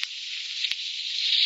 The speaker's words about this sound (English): Oh, why doesn't somebody turn that radiator off? It's hissing.